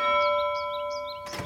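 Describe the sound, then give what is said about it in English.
The doorbell of an orphanage rings with a steady, sustained chime that slowly fades, while light chirping sounds flutter above it, ending in a short burst of rustling noise. “Will you ring the bell, Jacopo?”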